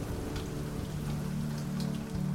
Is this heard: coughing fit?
no